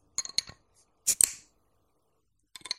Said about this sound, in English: There we go. That's me opening a bottle of cider. I've decided I want one.